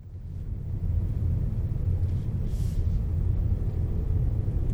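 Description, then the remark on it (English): A steady, heavy low-frequency rumble inside a white 2019 Mustang convertible driving on a Los Angeles freeway in bumper-to-bumper traffic, constant engine and road noise filling the background with a faint brief hiss partway through, no voices. “The following Thursday, I'm driving on the Los Angeles freeway to Trevor's house in bumper-to-bumper traffic.”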